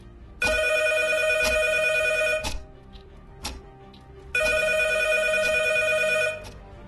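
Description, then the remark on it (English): A telephone rings loudly in two long bursts of bright, harmonic trilling separated by a pause with a faint click, with no voices. “As the clock ticked towards Thursday's deadlines, my phone rang.”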